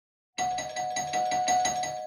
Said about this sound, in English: The ringing of that doorbell reverberates through Jeff Lynn's basement laboratory, where the conjoined Zeke's are still undergoing their science scan.